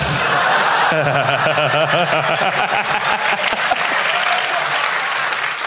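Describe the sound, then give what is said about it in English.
Sustained audience applause, a dense, steady wash of clapping for several seconds, with a voice briefly calling out and some laughter mixed in early on. “This fact transcended the awe and took it straight to applause.”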